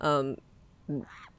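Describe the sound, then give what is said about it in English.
A pet baby bird gives two short, nasal calls, the first a loud honking squawk, the second softer and rising into a thin chirp, with no talking. “Do you hear that? Yeah, I love it. That's my little baby bird.”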